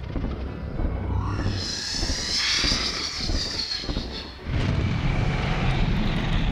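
A slimy, horned dragon that looks like a large snake with wings swoops in with a deep, continuous roar and rhythmic whooshing wingbeats, loud, surging into a heavier rumbling rush near the end. No voices are heard.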